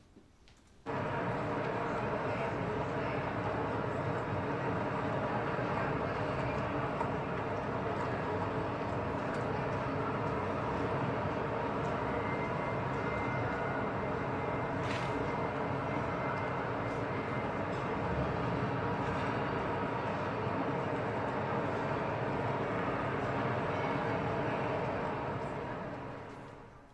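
A dense, steady hum of many people talking at once in a large enclosed space, their overlapping voices in an indiscernible language blending into an indistinct murmur that holds at a constant loud level for nearly half a minute.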